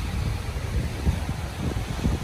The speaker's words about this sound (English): And it was really cool that we actually did go today because today was really windy. Here's what it looked like. I'm sure you can hear how windy it is on the water.